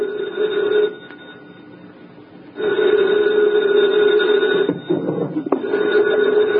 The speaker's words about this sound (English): 2:00 in the morning, the phone rang.